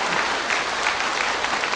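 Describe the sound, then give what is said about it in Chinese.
An audience applauds steadily as a master is invited to give a teaching, a dense, even wash of many hands clapping at once with no break and no voices rising above it. “嗯，热烈掌声鼓。”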